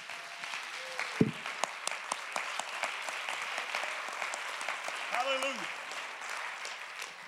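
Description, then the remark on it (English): An audience claps together in a dense, sustained burst of applause to give praise to God, with a few scattered voices rising faintly underneath. “Clap your hands. Let's give him praise together.”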